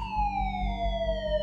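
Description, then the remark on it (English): A loud emergency siren wails steadily, its pitch sliding slowly downward over a low rumble of traffic, as police and ambulance vehicles arrive. “The police and an ambulance arrived simultaneously, but by then, the two men were miles away.”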